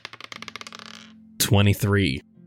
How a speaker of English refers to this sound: I'm going to have you do the lady in red and the man with the top hat first and do a separate roll for the man you just saw. Just sleight of hand. I'm using the red dice for the lady in red.